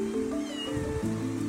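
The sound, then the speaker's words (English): Stray kittens found on the side of a road in Louisiana meowing, their cries loud and continuous, blending into one another for about a second and a half with no one speaking. “stopped his car the other day to save a stray kitten.”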